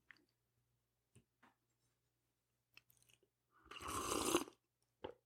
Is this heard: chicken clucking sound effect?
no